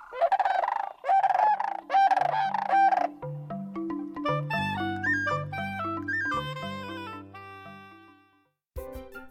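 Sandhill crane calls: four loud, rolling, honking bursts over the first three seconds. Then sustained instrumental music with low held notes takes over, with no talking.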